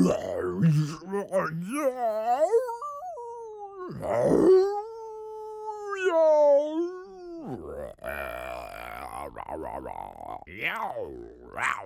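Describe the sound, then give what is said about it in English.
A voice imitates a monster, the Spotted Atrocious, a ferocious caged beast, letting out long, wavering howls and rough guttural growls with sliding pitch, several drawn-out cries broken by short grunts, loud and without any ordinary speech. “And now here in this cage is a beast most ferocious, who's known far and wide as the Spotted Atrocious, who growls, howls, and yowls the most blood-curdling sounds, and each tooth in his mouth weighs at least 60 pounds.”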